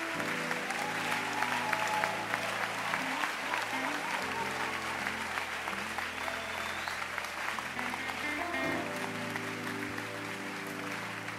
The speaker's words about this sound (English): Keep clapping for them. I can't believe that people are sitting down when souls are being saved. It means that you have no energy for the things of God. You will have energy for something else. Keep clapping your hands.